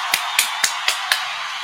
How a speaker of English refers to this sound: Let's go ahead and get to the part of the pod where we always do, man, and go ahead and give another round of applause to Premier Cocktail.